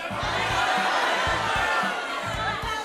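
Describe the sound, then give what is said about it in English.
A live audience shouts out how much money they are donating, all at once in a loud, jumbled roar of overlapping voices, with a steady low rhythmic thumping running underneath throughout. “I want everyone to yell out exactly how much money you're donating, okay?”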